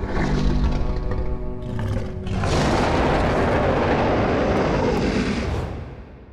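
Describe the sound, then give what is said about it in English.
A huge female creature roars triumphantly on reaching the top of a mountain, a long, powerful roar starting with a deep harmonic bellow that swells into a broad, rumbling blast before fading away, loud with no one speaking. “she spiraled her way to the top, corkscrewing around the mountain, making a display of herself and roaring triumphantly when she reached the top, the place where she had made a new home among the ruins of the Aegirgin.”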